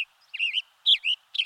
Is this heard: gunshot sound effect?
no